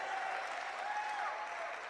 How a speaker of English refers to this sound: Oh, you're not clapping for him well at all.